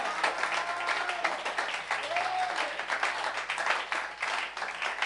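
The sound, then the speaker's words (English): A crowd claps in appreciation of God, steadily and densely throughout, a continuous wash of many hands with no clear rhythm, fairly loud, with faint voices and a brief whoop rising above the applause. “Are you clapping? Are you appreciating God?”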